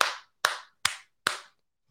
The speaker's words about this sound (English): Clap.